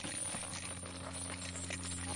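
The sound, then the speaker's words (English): Chains rattle and clink in a steady, jangling stream for about two seconds in an audio drama of A Christmas Carol, with scattered sharper metallic hits over a constant low hum and no voices. “Listen to those chains.”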